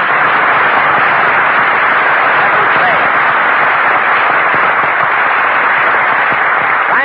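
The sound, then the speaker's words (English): A large studio audience applauds Jack Benny as he is introduced on the last program of the season, loudly and steadily, a dense wash of clapping that holds at full strength for about seven seconds with no talking over it. “Never mind, Jack Benny, applause.”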